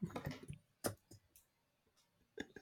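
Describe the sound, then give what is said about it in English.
A ballpoint pen clicked repeatedly, sharp crisp snaps coming in an uneven cluster at first, then a few isolated clicks separated by short silences. “put that pen down and start clicking the bastard.”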